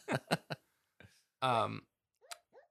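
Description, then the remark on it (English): A dog whimpers while dreaming in its sleep right next to the speaker: a few short muffled yips, a longer whiny moan, then two faint high-pitched squeaks, with quiet pauses between. “And my dog is dreaming next to me.”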